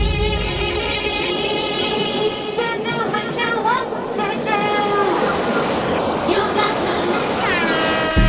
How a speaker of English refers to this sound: Train going by.